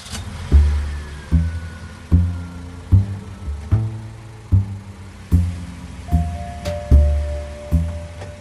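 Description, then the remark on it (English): A car engine revs and accelerates in a steady series of throaty surges, each swelling and dropping away, as the car sets off to tail another car; fairly loud with no voices over it. “He's getting in the car with Dana. All right. You ready to do or die? Always ready, Balin. Always ready. Good. Tail him.”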